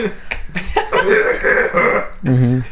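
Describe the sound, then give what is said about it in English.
A voice imitates the raspy, gravelly cough of General Grievous, a few rough bursts ending in a strained, throaty rasp, with no other sounds around it. “His random cough.”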